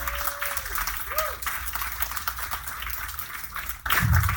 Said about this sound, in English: I think we should all give a round of applause.